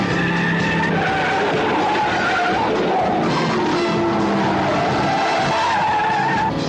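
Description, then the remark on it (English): A stolen Corvette in a chase, from the film Corvette Summer, screeches and skids at speed, tires squealing in long wavering tones over a roaring engine, loud throughout like a frantic chase. “On the trail of a stolen Corvette. Stop this car!”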